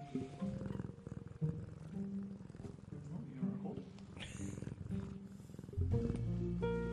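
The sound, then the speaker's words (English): A cat purrs in a steady, rhythmic rumble that carries on throughout and swells louder and fuller near the end. “That does kind of make me happy, and it is just cats purring into things.”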